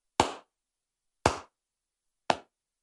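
Three slow, deliberate hand claps, evenly spaced about a second apart, each a sharp crisp smack with a short decay, with silence between and no talking.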